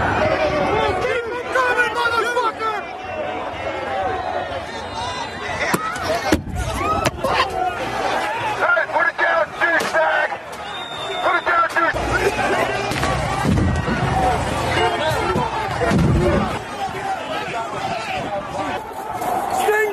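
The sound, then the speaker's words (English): Police yelling over a noisy crowd while launching various munitions, including flashbangs, toward the people, with several sharp bangs breaking through the constant shouting and chatter. “Here's the audio sounds of police as they yell and launch the various munitions towards the people”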